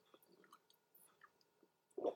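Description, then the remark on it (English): Quiet mouth noises and small wet clicks lead up to a short slurping sip of coffee near the end, with no talking. “I'm just going to have a little sip of my coffee. I'm sorry if there's a slurp.”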